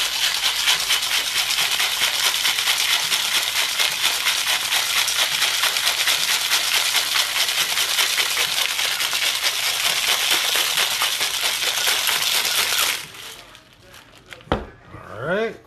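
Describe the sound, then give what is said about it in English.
A cocktail shaker holding two cocktails with two separated egg whites is shaken hard and steadily for about thirteen seconds, a loud, rapid, continuous rattling and sloshing that stops abruptly, followed by a few quieter handling sounds. “give it a good shake.”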